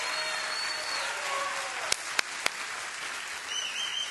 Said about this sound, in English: Is there anybody still cheering? Anybody still cheering? Anybody still cheering? Anybody still happy out there? Come on, is anyone?